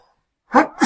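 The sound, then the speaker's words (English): A person sneezes: a short sharp intake, then an explosive, hissy burst, after a moment of silence. “I'm going to sneeze.”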